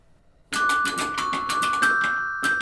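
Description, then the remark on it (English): Large carillon bells in a bell tower ring out in a quick, steady run of struck notes, a fairly simple piece played without pedaling shoes, their bright tones overlapping and sustaining into a loud, resonant shimmer after a brief quiet start. “And I didn't bring my pedaling shoes today, so I'll be finding something fairly simple, if that's all right.”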